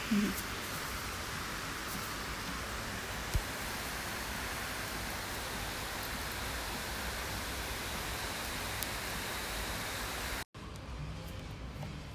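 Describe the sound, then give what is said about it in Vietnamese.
Heavy rain pours down in Vietnam in a steady, dense hiss that never lets up, then cuts off abruptly near the end, leaving a softer wash of noise. No one speaks. “Mưa rồi đấy, rất to.”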